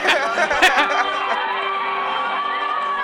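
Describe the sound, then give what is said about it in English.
A crowd cheers and shouts together, many overlapping voices forming a loud, sustained roar with a few sharper bursts near the start, then settling into a steady din. “They're cheering for you.”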